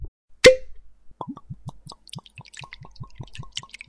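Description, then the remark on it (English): A sharp pop or clink, then a third nip of Glen Glasso 1978 whiskey glugs steadily from a bottle into a glass in quick, even bubbling gulps of liquid, with no one speaking. “As the gentleman finished that one off, we'll pour nip number three and we'll move on to the final part of the conversation.”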